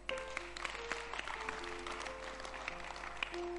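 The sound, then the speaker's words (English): An audience claps during a sermon in a dense, steady wash of applause lasting a few seconds, the many overlapping hand claps blending into a continuous crackling roar with some faint tonal sounds mixed in. “I thought you'd clap.”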